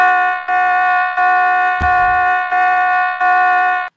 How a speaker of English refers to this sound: Right out of the gate, you should be hearing a GQ alarm klaxon sounding in your head.